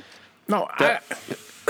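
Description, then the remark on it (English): A person coughs twice in quick succession, then clears their throat with a few shorter, softer rasps, each burst abrupt and breathy. “You're coughing. Look at you.”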